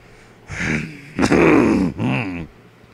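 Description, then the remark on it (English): A man clears his throat in three rough, gravelly bursts: a short one, then a longer, louder harsh rasp, then a shorter trailing one. There is no speech. “I'm not laughing, I'm clearing my throat.”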